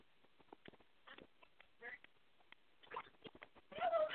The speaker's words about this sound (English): You be quiet, phony birds. You're being punished for biting mommy.